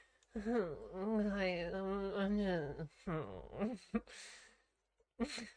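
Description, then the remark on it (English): A long, drawn-out voiced yawn from a person who says they are drunk, with a wavering, sliding pitch, fairly loud, trailing off into a few shorter breathy vocal sounds and brief exhales. “I'm just drunk yawn.”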